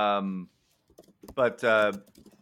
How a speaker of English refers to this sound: Someone is typing, and it's not me this time. Sorry, that was me.